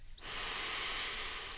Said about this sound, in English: The calm monkey looked at the busy monkey and said, "Breathe, busy monkey, just breathe." So let's take another deep breath in with the calm monkey.